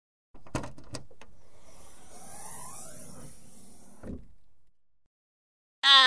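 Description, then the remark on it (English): A bus arriving at Kiriyama Park rumbles in and slows with a faint squeal, stops with a heavy clunk, and the engine noise dies away; after a short silence a loud, sharp burst follows, like a door or brakes. “You brats are lucky we just arrived at Kiriyama Park. Now shut up, grab your stuff, and get off my bus.”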